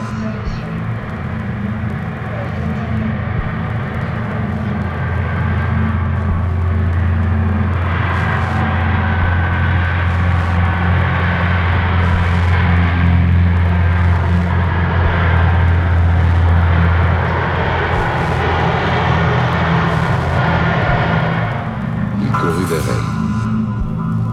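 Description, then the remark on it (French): A steady, loud roar of airplane engines at an airport hums and drones throughout, with a man's voice speaking calmly over the continuous rumble. “dans ce chaud dimanche d'avant-guerre où il allait pouvoir demeurer, il pensa avec un peu de vertige que l'enfant qu'il avait été devait se trouver là aussi à regarder les avions.”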